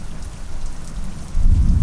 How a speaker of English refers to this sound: There's some thunder rumbling in the distance. Lightning strikes directly overhead.